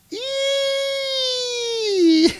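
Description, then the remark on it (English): A voice lets out one long, loud, imitated scream, holding a steady high pitch that sinks slightly over about two seconds before breaking off abruptly. No other sounds accompany it. “And Hercules hears the scream from below, and he whips around and he says, I'm afraid you'll have to finish without me, David Rigg, for I need not the wisdom of Athena to know that scream was a cry for... Help!”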